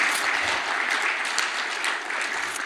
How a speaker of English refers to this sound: I just want to give them a round of applause again. They're doing so well.